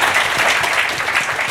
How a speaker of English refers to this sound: Before we wrap up, I just want to give, once again, a huge round of applause to our speakers for tonight